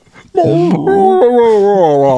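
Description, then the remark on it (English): A female husky's drawn-out, whimpering vocalization, loud, its pitch bending up and down in a talkative, yowling whine that runs continuously for about two seconds. “That's how she talks.”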